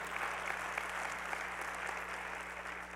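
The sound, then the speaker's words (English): An audience claps steadily throughout, a dense, even wash of many hands with no one speaking over it. “That's a good place for applause.”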